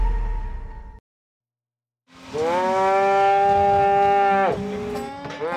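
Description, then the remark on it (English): A single loud, drawn-out cow moo, rising and wavering for about two and a half seconds, followed by a rougher trailing bellow, with no one talking, during the fall roundup at the Bullhead Ranch, when all the cattle are gathered. “This is the fall roundup at the Bullhead Ranch, a time when all the cattle are gathered.”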